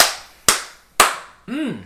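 Three loud, sharp hand claps spaced evenly about half a second apart, each ringing out briefly, followed by a short voiced tone whose pitch rises and then falls.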